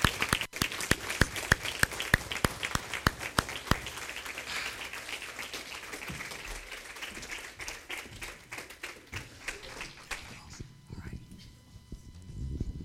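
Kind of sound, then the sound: crowd, audience standing and applauding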